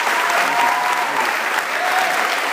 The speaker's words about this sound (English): Give yourselves one more round of applause.